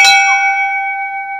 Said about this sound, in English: Oh, yes. Yeah. Yeah. Oh, yes. That's pretty badass. We got the bell right in the middle of the table.